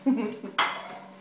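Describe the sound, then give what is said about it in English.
Plates and cutlery clink together in a short burst: a few light knocks, then one brighter clatter of crockery that rings and fades. No one speaks. “Oh, can you use your plate,”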